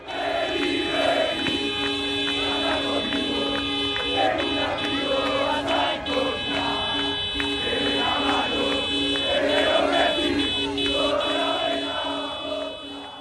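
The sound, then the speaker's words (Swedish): Newell's Old Boys football fans on the streets of Rosario at night, waving flags, chant olé in a loud, rhythmic crowd chorus about Messi while long, steady car horns blare over and over beneath the singing, a continuous street celebration with no pauses. “Det är alltså fansen till Newell's Old Boys som var ute och viftade med flaggor och tutade med bilar, och så sjöng de olé, olé, olá, olá.”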